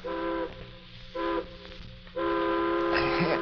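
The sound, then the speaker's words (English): A distant steam train whistle sounds three times in the morning: a short blast, another short blast, then a long sustained one, with a hissing rush of steam near the end over a low rumble. “And the next morning, a distant train whistle wakened me.”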